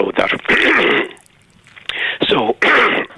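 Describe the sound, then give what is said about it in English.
A person clears their throat several times in quick, rasping bursts, with a brief pause partway through before a couple more harsh clearings. “While you clear your throat,”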